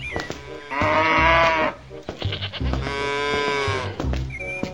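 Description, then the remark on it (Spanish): A cow that has just been milked lows twice after kicking over the milk pail, two long, drawn-out harmonic calls about a second each, loud, separated by a short pause with faint farmyard background noise. “Y mira ahora, esta vaca ahora me la ha dado una patada a la cubeta y me ha virado toda la leche.”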